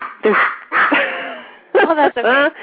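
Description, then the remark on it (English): Dogs, scared of a storm, bark and yelp in a handful of loud, strained bursts, some drawn out into whiny tones, with brief gaps between them. “Everybody can hear my dogs.”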